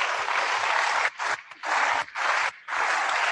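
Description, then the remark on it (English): An audience claps together as a clap offering to Jesus, a dense, loud wash of applause that swells in long bursts with a few brief dips between them. No voices stand out. “Oh, give a clap offering unto Jesus.”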